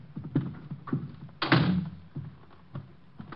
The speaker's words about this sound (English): I'm locking the door. I don't want anyone coming in.